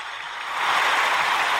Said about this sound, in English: Let that build. Let that applause build. Yeah, I hear it. Uh-huh. It's dying down. Oh, it's over.